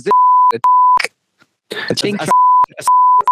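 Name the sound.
censor bleep tone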